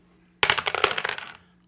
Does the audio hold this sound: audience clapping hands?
no